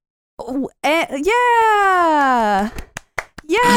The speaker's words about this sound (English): You just get up and start clapping? Yeah, I do.